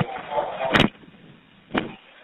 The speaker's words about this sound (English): She heard the side door open.